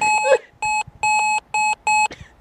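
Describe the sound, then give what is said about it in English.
A run of five short, loud, evenly spaced car horn beeps, a bright electronic-sounding tone repeating in a steady rhythm with no voices. “A car, what did it say? Car beep? Yep, car beep.”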